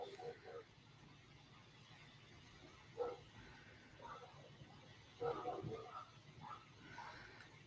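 Dogs bark in scattered bursts, a few sharp barks with pauses between and a quick cluster near the end, fairly faint over a low background hum.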